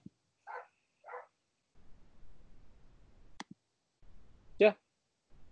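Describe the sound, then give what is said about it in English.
A dog barks a few times in short, separate bursts, two quick ones close together and then a sharper, louder bark after a pause, set against a faint low background rumble. “That's me barking in the background.”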